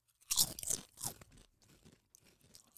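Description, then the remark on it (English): Loud, crisp crunches as a chip is bitten and chewed: a few sharp bursts in the first second, then quieter crackling chews trailing off. “That is not a bad chip.”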